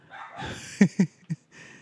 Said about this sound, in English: They're going to do a lot of speaking for us. Hello, neighbor dogs.